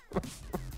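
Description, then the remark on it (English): A person imitates a cow, giving a low, droning moo that swells and dips in short repeated pulses, moderately loud with no other talk. “Is … doing the cow there? Yeah. Yeah. That's his cow.”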